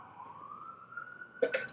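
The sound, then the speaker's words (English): A fire truck siren wails in a single long tone that slides gradually upward and holds, moderately loud, before a few brief clattering bursts break in at the very end. “No, you guys have fire trucks for everything.”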